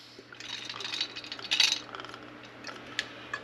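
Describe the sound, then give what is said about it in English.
Oil is poured into a Ninja air fryer: a soft, trickling liquid glug with a brighter splashy burst midway, followed by a few faint clinks and taps, with no talking. “Good glug of oil.”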